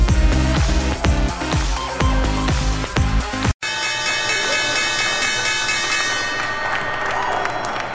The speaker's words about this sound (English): The opening bell on Wall Street, off to the races. Warner Media, HBO Max, ringing the opening bell this morning, ringing it virtually as it launches its streaming service, HBO Max, more in a moment.